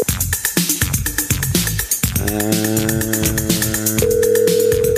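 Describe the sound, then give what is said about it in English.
A phone rings for an incoming call with an electronic ringtone: a busy rhythmic burst, then steady sustained synthetic tones that hold loud until the end, with no voices. “All right, let's get the phone.”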